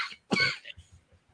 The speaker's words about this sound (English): And now I have a coughing fit in the show. How great.